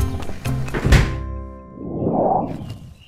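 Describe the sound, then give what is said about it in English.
A heavy door thunks open with a few clunking knocks leading into one deep, loud thud, followed by a low swelling whoosh as it swings, with no voices. “Okay, now let me just open this door here.”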